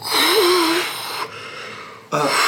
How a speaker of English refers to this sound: Oh, there it is. Oh my God. God, I can hear that breath right through the door.